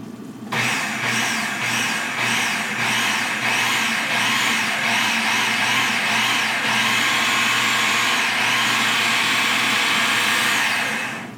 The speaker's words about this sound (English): So not uniform, but a crumbly texture. Oh, and don't forget your 1 teaspoon of salt should also go in with the flour. Okay, so I'm gonna whiz up my food processor here.